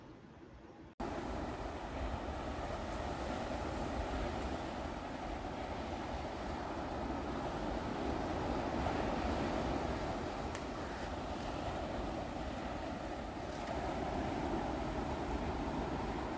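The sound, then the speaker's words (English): A steady, full roar of ocean surf starts after a brief moment of quiet and washes on continuously without pause. No one speaks. “For the next 8 breaths, I'm gonna have you listen to some ocean sounds.”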